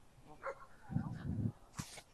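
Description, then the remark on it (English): Faint, brief sounds of dogs walking by on a beautiful day: a couple of short whiny yips, a low rumbling snuffle, then a quick sharp sneeze-like burst, all quiet against a soft outdoor background with no talking. “I wanted to give you guys an update as some dogs were walking by on this beautiful day.”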